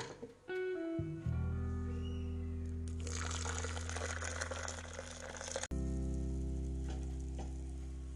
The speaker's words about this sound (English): Can you hear the sizzles? Oh my god, the water is too hot.